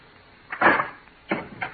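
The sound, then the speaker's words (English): A door is opened: a rattling clunk of the latch, then two shorter knocks of wood and hardware a moment later, with quiet around them and no voices. “Please open the door.”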